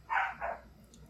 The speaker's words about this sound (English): Shut that dog up. I didn't realize we were doing this from Petco Studios. Yeah. Dog's having a fit. Hold on. You discipline that dog.